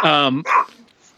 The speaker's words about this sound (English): And that's my gal. Hey, I think she's barking at the pool guy.